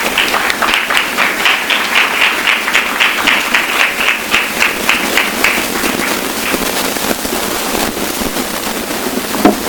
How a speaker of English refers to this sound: Let's please give a warm round of applause for Pat Morrison.